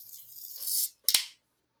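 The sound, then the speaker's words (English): A can of Downward Spiral IPA from a local brewery in Hastings, Minnesota being opened: a thin, rising hiss builds for under a second, then a sharp crack with a short fizzy burst. No one talks. “And solid open.”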